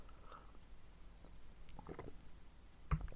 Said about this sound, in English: So now I'm going to have a quick sip of water, and then we're going to start with today's episode.